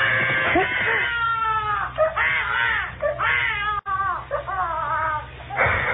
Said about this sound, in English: That's the most frightened I ever was in my life. When a kid started to yell. Because in the first place, I didn't know what it was right away. And in the second place, I thought, he'll wake up everybody in the apartment